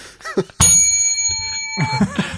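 A bright bell rings once with a sharp strike, its clear metallic tone sustaining and slowly fading while voices murmur quietly before and after it.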